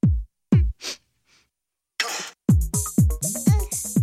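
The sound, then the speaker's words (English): Booming electronic kick drums of a techno track thump at a steady pulse, broken by short breathy sniffs and a loud hissing sneeze burst that are a sample, then a busier beat with bright synth stabs returns. “There's a sneeze. Yeah, sniffling.”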